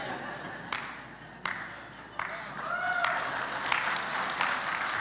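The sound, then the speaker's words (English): Scattered audience claps at first, a few sharp isolated hits, then building into steadier, denser applause from a crowd, moderately loud over a low room murmur. “You don't have to clap for that one.”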